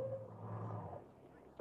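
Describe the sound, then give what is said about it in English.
A dog inside a taxi cab in hot weather growls low and steadily for a moment, with a brief higher whine at the start, over a faint rumbling background. “What's the matter with your dog? Got the pit? Not feeling good.”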